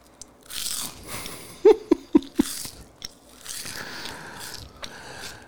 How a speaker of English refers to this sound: I can't hear you over my crunching, so you're fine. We'll just crunch away.